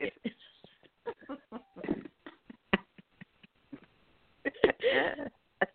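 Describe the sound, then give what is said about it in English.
A rapid run of short nasal sniffs in an uneven rhythm, followed by a louder, longer burst of nose blowing with a final quick sniff. “Sniff and blow.”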